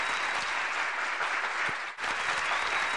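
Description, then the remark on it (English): A burst of crowd applause plays as a sound effect celebrating the engagement of Khalfani, a Ready to Love cast member, steady dense clapping that fills the whole stretch, with a brief dip near the middle before the clapping resumes at full strength. “I'm like, where's the applause? Applause, applause.”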